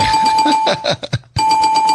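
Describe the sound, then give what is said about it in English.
A bell rings twice, loud, each ring a sustained bright buzzing tone separated by a brief pause with a few faint clicks in between. “That was two counts of the bell.”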